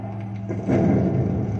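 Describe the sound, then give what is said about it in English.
Aircraft landing gear, released from its horizontal lock with hydraulic pressure built up while circling back over the field, slams into its locked position with a heavy mechanical thud over a steady low engine drone, followed by a louder, rough rumbling that continues to the end. “Suddenly release the horizontal lock and try to slam the gear into lock position.”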